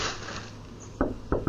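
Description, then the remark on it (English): Three sharp knocks on a door, one followed after a short pause by two quicker ones, clear over a steady low background hiss, with no voices. “There's me knocking.”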